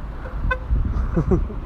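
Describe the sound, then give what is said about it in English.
A single short, sharp car horn toot, beeped at someone walking in the Islington area of Liverpool, rises above a low road rumble, and moments later a voice begins talking. “Somebody just beeping me there.”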